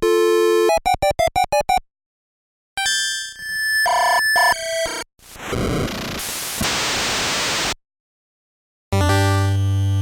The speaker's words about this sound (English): Like old school texting. You're spelling out unicorn. Yep, exactly. With numbers. You picked up the dial tone and you type in unicorn on the dial pad. It's a touch tone phone.